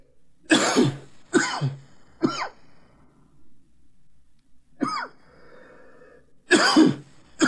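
A loud run of harsh coughs comes in bursts: a quick cluster of three, a pause with faint breathing, then two more heavy coughs, with no talking.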